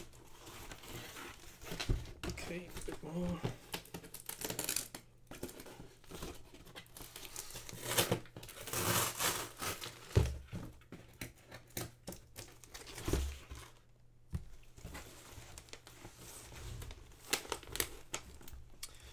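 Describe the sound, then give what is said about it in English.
Masking tape is peeled off the top flaps of a cardboard box to open it, in a run of crinkly rips and scratchy rustles that come in uneven bursts, with no one talking. “I'm just going to take the tape off the flaps. Open it that way.”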